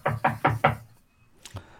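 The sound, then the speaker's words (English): Four quick, evenly spaced, solid knocks on a door, followed by a brief quiet pause and a faint shuffle or tap. “Before you open the door and you bring in Thrilly for another segment of You're Wrong with Thrilly McThrillist”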